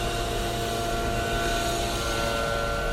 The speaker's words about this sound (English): I know minuscule compared to air travel or whatever, but that thing's really loud. That blower, the leaf blower, that sucker.